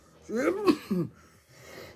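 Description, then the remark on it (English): Heavy, rasping coughs: a harsh, strained burst followed quickly by a shorter second hack, then quieter breathy noise and a faint final catch of the throat. “Coughing up a lung.”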